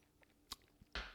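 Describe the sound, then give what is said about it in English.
A quiet sip of Johnny Walker Black whisky from a glass: a couple of soft clicks, then a short breathy slurp, with no talking. “In fact, let me take a sip here.”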